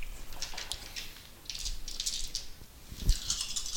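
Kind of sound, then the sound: household object, dice being rolled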